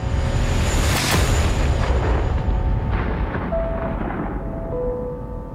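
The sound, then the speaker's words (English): A massive explosion in a political ad, happening behind people posing toward the camera, erupts with a sharp initial blast, followed by a long, loud rumbling roar that slowly fades, with faint tonal hums lingering underneath. “Of course, it has to end with all of them in super cool guy poses as they are looking at the camera instead of the massive explosion that is happening right behind them.”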